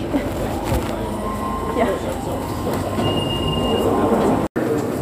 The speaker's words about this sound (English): We took the train from New Milton and we just arrived in London.